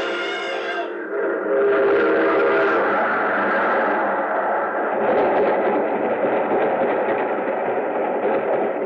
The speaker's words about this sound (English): There's a train coming. There he goes. He's going to try to beat it.